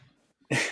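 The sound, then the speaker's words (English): A single sharp, loud dog bark bursts out after a moment of near silence, cutting off abruptly. “Neighbor dog decided to bark, so my dog said, "Whoa, there's a dog somewhere in the world.”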